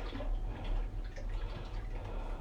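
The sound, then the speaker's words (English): A steady stream of Drano liquid drain cleaner, about 4 ounces, pours into toilet water, a continuous splashing and gurgling that holds for a couple of seconds with no voices. “I think I did a heavier pour than you did.”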